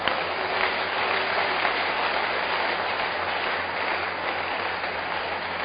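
A large church audience claps steadily in a dense, continuous wash of applause that holds an even loudness for several seconds, with no one speaking over it.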